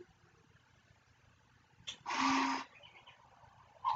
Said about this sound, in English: That's pretty much it. Cuckoo clock says I'm done.